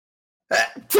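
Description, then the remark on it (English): A single sneeze bursts out of silence: a breathy, hissing intake followed by a sharp, voiced explosive release, fairly loud and over in about half a second. “I gotta sneeze.”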